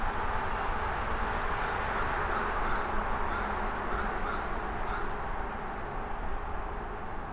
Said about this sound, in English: I'm just now hearing the crow.